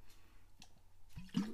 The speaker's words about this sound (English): I've just been doing too much talking here, and I'm going to be taking a drink of water here just to stay cool.